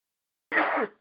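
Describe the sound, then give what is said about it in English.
A single sneeze bursts out of silence, a sudden loud, breathy blast with a rough voiced edge that lasts about a third of a second before fading quickly. “Sorry, I had to sneeze. Oh, there was a sneeze there.”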